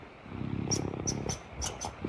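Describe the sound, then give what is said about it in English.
A raccoon purrs in a soft, continuous low rumble while kneading with its paws, with faint rhythmic pulses and a few brief high squeaky chirps scattered over the top. “You're not listening to a cat right now. You are listening to a raccoon. They purr.”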